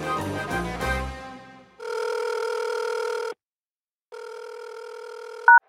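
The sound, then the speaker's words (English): A phone line rings twice with long, steady electronic tones separated by a short pause, preceded by a brief burst of descending beeps, as a call is placed to a man held in ICE custody; no one speaks. “I reached him over the phone as he's not allowed visitors.”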